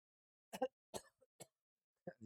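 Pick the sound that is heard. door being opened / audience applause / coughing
coughing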